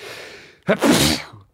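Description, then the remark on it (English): A single loud sneeze: a soft drawn-in breath, then a sharp explosive burst trailing into a breathy spray before fading out. No one speaks. “I'm going to sneeze. Should I share it with you?”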